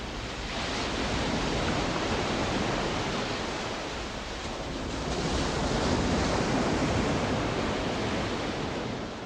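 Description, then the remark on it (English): Ocean waves wash continuously onto a seashore in a dense, steady roar of surf that swells gently and subsides, with no voices. “They kept working until they felt like it captured the majestic sound and feel of the ocean.”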